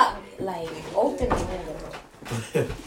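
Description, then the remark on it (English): A door thuds shut with a short clatter, followed by a second knock-like clack as it is locked, while voices murmur in the background. “He need a lock that door for me,”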